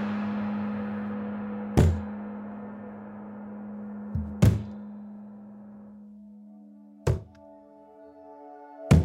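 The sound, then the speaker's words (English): Four heavy, dull thuds of a person banging their head against a wall, spaced a few seconds apart, over a steady low droning hum. No one speaks. “I'm just banging my head against the wall.”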